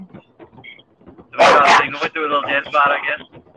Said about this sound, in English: Dude, get your dog under control. I try. Hey, shut up, man.